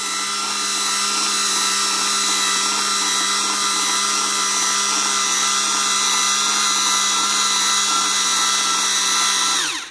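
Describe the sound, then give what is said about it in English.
A steady, loud electric motor whine of an electric peeling machine, started by a button as its blade comes down, hums with stacked tonal harmonics for nearly ten seconds, then abruptly winds down and shuts off as the blade hits the bottom. No voices are heard. “and it's shut off, as you heard. And that's how you peel a cucumber, potatoes, the grapefruit that you heard the story about.”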